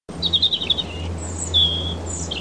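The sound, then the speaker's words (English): A short burst of bright, high-pitched birdsong used as a sound effect to censor a rude word, several quick chirps and trills in rapid succession, standing alone over a low, steady background hum with no one speaking. “No, don't say a rude word, but just say something which Sophie's going to have to birdsong.”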